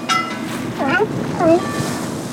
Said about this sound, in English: We sail out of the San Francisco Bay and are traveling up past the Point Bonita Lighthouse in the Marin Headlands. We pass a yellow buoy covered in sea lions.